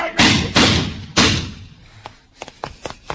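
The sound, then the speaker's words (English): A car with no lights strikes a man with a heavy thud, followed by two more loud impacts within a second, then a scatter of fainter knocks and scrapes as things settle. “It just knocked me down.”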